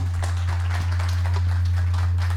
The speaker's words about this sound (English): If y'all just give him a hand clap this morning.